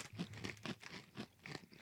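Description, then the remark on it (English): Quiet crunching of a crisp, apple-pie-flavoured cinnamon snack being chewed, with about five gritty bursts in an uneven rhythm and no talking. “I love the crunch. That's what makes them, really.”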